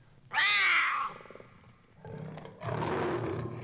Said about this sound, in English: And this is the purring of the puma or mountain lion. A purring which he punctuates with this shrill cry.